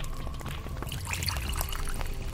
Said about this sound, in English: He pours himself a whiskey without asking anyone.